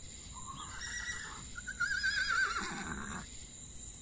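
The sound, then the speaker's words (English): One of the Count's prize horses whinnies in a horse barn, a high, quavering neigh that trembles for a few seconds before sliding down into a lower snort. Steady background hiss underneath, no talking. “You hit one of the Count's prize horses and we're dead, man!”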